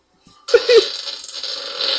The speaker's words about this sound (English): Like, dude, this man is just passed out with a nice warm towel over his bald head, just ripping the most massive of farts.